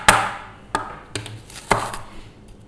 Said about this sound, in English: We start by chopping the onions. So you just chop them roughly. We're not going to keep them after we've done our broth. So they're just there to give some flavor to the broth.